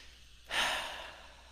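One deep, airy breath in and out, taken as a breathing exercise, swells suddenly, then slowly fades out like a long exhale. There is no talking, just quiet around it.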